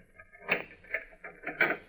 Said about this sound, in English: Unlock the door.